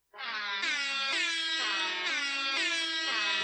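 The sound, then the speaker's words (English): A loud, blaring air horn sounds continuously for over three seconds, its harsh tone stepping up and down in pitch in a repeating pattern like a melodic horn riff. “That's not the air horn I was expecting.”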